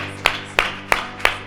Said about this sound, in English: Would you clap your hands as you're seated and thank God?